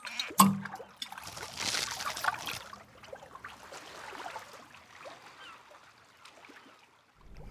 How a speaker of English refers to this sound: Splash. There was a sound I heard.